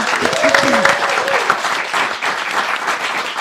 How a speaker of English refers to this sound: She gets a round of applause as well.